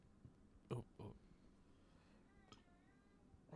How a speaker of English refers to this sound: Excuse me. You okay? Mm-hmm. A little baby burp.